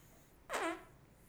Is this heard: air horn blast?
no